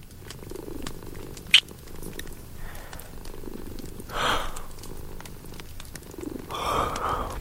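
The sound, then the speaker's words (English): A kitten purrs in a soft, steady, rhythmic rumble, swelling into a couple of breathier surges, with a brief sharp click early on. No one speaks. “Oh, and it seems the little one wants to lull you to sleep too.”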